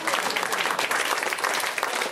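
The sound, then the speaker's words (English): Steady, dense applause from a show audience, a loud continuous wash of many hands clapping at once with no break and no voices standing out. “Sometimes you just make a little extra effort, the rest of the audience, and you too could get a round of applause for yourselves.”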